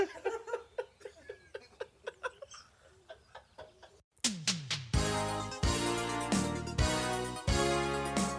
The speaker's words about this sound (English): I like how … always waits for the fucking woodpecker too and starts talking immediately after